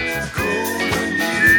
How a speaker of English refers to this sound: That's some good whistling right there. That's a sweet whistle, yeah.